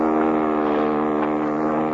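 A steady, droning motorboat engine hums with a constant low harmonic whine, running smoothly without pause and with no voices over it.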